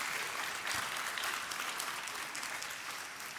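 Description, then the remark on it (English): Sustained applause from an audience, a dense steady wash of many hands clapping at once, loud throughout and tapering slightly toward the end, with no voices audible. “As Alistair Begg said last week when he was being clapped, this is not America.”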